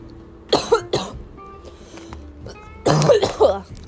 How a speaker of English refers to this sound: Sorry, guys, you know. Cough up a lung.